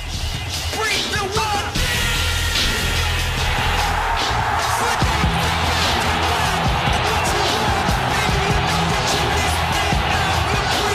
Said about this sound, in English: Like when this flips to when Jericho comes up on the Titantron, I still get goosebumps hearing that crowd reaction. Let's cut to just this pop.